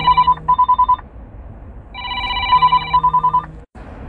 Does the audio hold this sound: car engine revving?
no